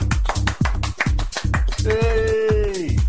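A lone person on Peterborough FM radio claps hands as a round of applause for a disco mini-mix, in a quick, steady rhythm, a dozen or so sharp claps over a low rumbling background, with a brief drawn-out voiced tone partway through.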